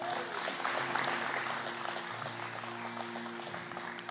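An audience applauds two guests who are visiting from Honduras this week. It claps steadily for about four seconds, a dense wash of many hands clapping with no break, while a low steady hum sounds underneath.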